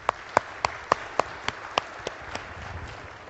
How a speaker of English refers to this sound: Round of applause.